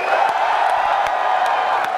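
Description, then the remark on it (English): A large crowd cheers and yells about the Vita in a steady, loud roar of many voices, with a few sharp claps or whoops popping out over the continuous noise. “We do this, we go crazy, we yell about the Vita.”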